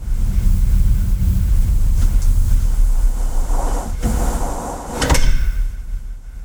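The massive heavy door of Impa's anechoic chamber rumbles and slides shut with a deep, low roar, ending in a sharp metallic clunk near the end, with no voices.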